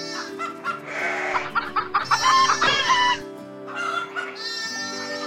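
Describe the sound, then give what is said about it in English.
Chickens cluck busily while a rooster crows through the middle, a lively, continuous barnyard chorus in a village, with no one talking. “With chickens walking around and sheep and things like that.”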